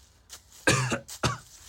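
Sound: cough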